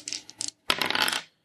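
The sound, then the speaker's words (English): Two dice, rolled for a spacesuit's armor in a tabletop game, clatter across a hard tabletop: a few quick light taps, a brief pause, then a louder, dense rattling tumble that settles within about half a second. Clear, with no voices. “Go ahead and roll 2 dice for your spacesuit.”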